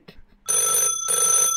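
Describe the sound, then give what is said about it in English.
A telephone rings loudly with a bright, buzzing bell tone, two long bursts separated by a short pause, heard on its own without talking. “Oh my God, a phone call!”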